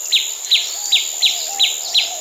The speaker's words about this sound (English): Chirp.